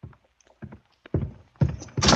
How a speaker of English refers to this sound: go to the closet. Open the door.